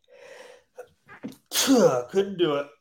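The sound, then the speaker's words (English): A man with allergies, trying to hold in a sneeze, takes a breathy inhale that builds up in a few short catches, then bursts into a loud sneeze with a strained voiced tail. “So I'm trying to hold in a sneeze.”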